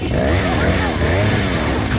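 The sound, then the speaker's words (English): A chainsaw engine revs loudly in a Resident Evil video game featuring Leon Kennedy, as villagers come out, its droning pitch rising and falling continuously, with voices shouting over the mechanical whine. “He has a chainsaw.”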